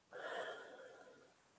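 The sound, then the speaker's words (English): A single long, airy breath during a mindful breathing exercise: a slow, deep breath in, a pause, then a slow exhale, starting abruptly and slowly trailing off over more than a second, with no talking. “And then you would take a slow, deep breath in. Pause, and then a slow exhale.”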